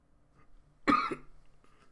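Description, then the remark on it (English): A single sharp cough from a chronic cough bursts out and fades within about a quarter second, followed by quiet background with no talking. “This chronic cough just will not go away.”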